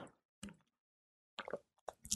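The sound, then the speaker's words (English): A person drinking water: a few short, wet gulping and swallowing sounds in irregular bursts, with brief silences between them and no talking. “And I just want to stop here and read the word that Pastor Gary gave us a couple weeks ago after I have a drink of water.”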